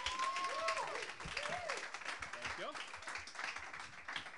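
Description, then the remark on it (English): A crowd at a comedy roast applauds steadily and loudly for several seconds for William Shakespeare, with dense clapping, a few sharp whistles early on and scattered cheering voices mixed in. “Oh, guys, big round of applause for William Shakespeare.”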